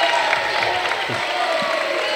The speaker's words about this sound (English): Well, either way, I know the crowd is cheering, but Parkwood has not done well on the free throw line.